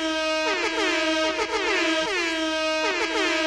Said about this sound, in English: And right there is when you put in like a sound effect of like goal, like hockey, like beam, beam, beam. Just a bunch of air horns is when you put that right in there.